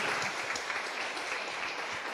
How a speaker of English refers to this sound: Big round of applause for Niall Muldoon. Big round of applause.